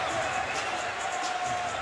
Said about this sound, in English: Alexander Walker out of Virginia Tech, a top 20 draft pick. Pull up three, hit it. And the crowd cheers him. That's nice.